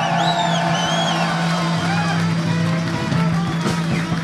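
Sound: audience cheering and whooping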